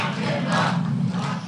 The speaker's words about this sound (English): Crowds started to call out, lock him up.